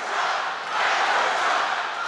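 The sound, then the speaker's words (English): A large crowd at the Save America rally on January 6th chanting and shouting together, "Fight for Trump", a dense, continuous roar of many voices that swells slightly partway through, loud and steady with no single voice standing out. “And this is what the crowd was chanting that day.”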